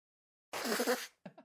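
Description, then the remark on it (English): A strong, forceful nose blow after a sneeze: one loud, rushing burst of air lasting about half a second, followed by two brief, softer snorts. “Strong nose blow, actually.”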